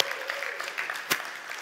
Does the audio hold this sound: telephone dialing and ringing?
no